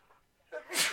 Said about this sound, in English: Excuse me. Sorry. Sneezing during the podcast. That's not good.